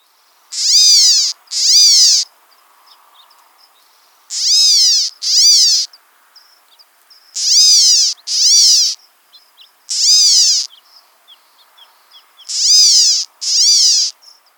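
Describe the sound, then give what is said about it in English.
California gnatcatcher giving harsh, nasal, cat-like mewing calls, mostly in pairs, about nine in all, loud, with faint soft chips between them and no talking. “So one more time, the California gnatcatcher call and song.”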